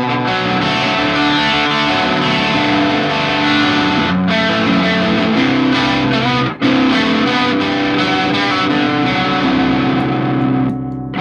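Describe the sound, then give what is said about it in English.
A distorted electric guitar played through a two-channel distortion pedal that uses a transformer instead of transistors plays loud, sustained chords with a thick, gritty tone, ringing continuously with a couple of brief breaks before fading at the end. No one speaks. “Instead of transistor-based distortion, it's, I believe, has a transformer in it”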